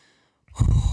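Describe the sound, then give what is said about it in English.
A sudden deep breath blasts into the microphone after a moment of near silence, a loud, rough rush of air with heavy low-end buffeting that lasts to the end. “Sorry for breathing in the mic. I just took a deep breath.”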